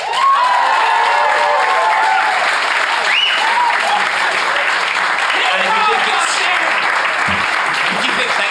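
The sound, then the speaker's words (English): A live audience applauds steadily for about eight seconds to vote for one side in a staged dispute involving a cyclist, a dense, even wash of clapping with a few scattered whoops and voices rising above it. “I'd like you to applaud in just a moment.”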